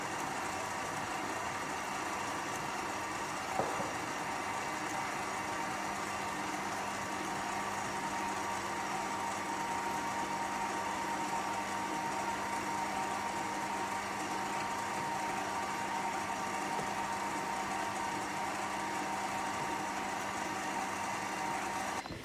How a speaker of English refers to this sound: It'll still feel warm, but that's okay. Add in your juice from the lime and also add in your cream. And just make sure that they're well whisked together.